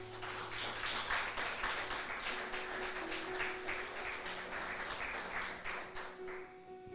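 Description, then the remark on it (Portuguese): An audience applauds the Lord Jesus steadily for about seven seconds, a dense, even wash of many hands clapping at a fairly loud level, with faint sustained low tones held underneath and no one speaking. “Aplauda ao Senhor Jesus.”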